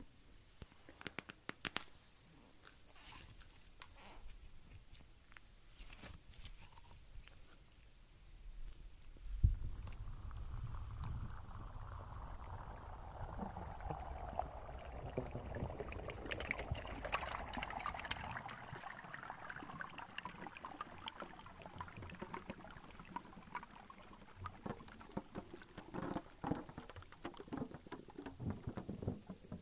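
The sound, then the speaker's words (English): Slime squished right against a microphone as an ASMR trigger: muffled wet squelching and crackling, joined partway through by a deep throbbing rumble that swells and fades. No one speaks. “some creative ASM artists tried different things with them, and we learned that slime on the microphone sounds quite nice.”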